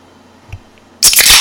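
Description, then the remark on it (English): A soft thump, then after a short quiet pause three drink cans crack open in quick succession, loud sharp pops blending into a bright, crackling fizz that continues to the end. “And because it's our first time back in a while, we're going to commemorate this with a trifecta of tops being popped.”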